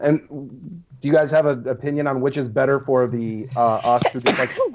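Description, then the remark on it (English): A person talks steadily, then a single sharp sneeze bursts out near the end, loud and breathy, cutting across the speech. “Bless you.”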